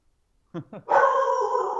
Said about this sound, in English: This is not my dog. This is not my dog. Whose dog is it? Do you have my girlfriend's dog. Do you have an intruder? It's my girlfriend's dog.